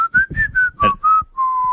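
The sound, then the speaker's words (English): A person whistles a short run of clear notes that slide up and down, finishing on a long held tone; fairly loud, with no talking. “Can you whistle? I can whistle.”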